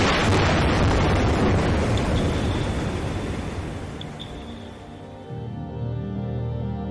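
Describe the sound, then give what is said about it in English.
A seismic survey air gun blast underwater, from boats carrying about 30 or 40 air guns fired at once to locate ocean-floor spots for fossil fuel drilling: a loud, deep boom that rolls into a long, rumbling decay, followed by a fresh low swell near the end. No one speaks. “That is seismic surveying.”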